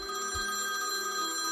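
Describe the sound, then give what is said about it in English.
A house telephone in a kitchen rings steadily with a bright, sustained electronic bell tone, heard alone, with no voices over it. “the house phone began to ring.”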